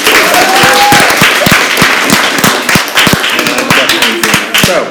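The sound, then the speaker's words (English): A burst of studio audience applause, dense overlapping hand claps forming a steady loud roar that holds for about five seconds, with a brief rising whistle-like tone near the start. “Studio audience applause.”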